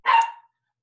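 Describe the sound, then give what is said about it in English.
A single short, sharp, loud and clear bark from Brutus and Steve, two dogs playing, then silence. No one speaks. “You may hear Brutus and Steve playing in the background.”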